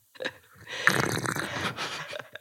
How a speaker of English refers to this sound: That was way slurpier than I had intended. But this little teacup is probably toddler size? Yeah, it's toddler size.